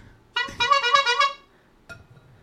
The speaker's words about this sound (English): hashtag quadruple honk.